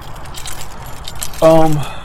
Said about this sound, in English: If you can hear me, I'm rattling the keys, I'm opening the door, going back upstairs to my girly girl.